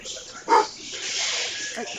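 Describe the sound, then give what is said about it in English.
A dog gives one sharp, excited bark about halfway through, followed near the end by a fainter yip, both over a steady background hiss. “They got really excited. So you've got people at Starbucks. I got dogs.”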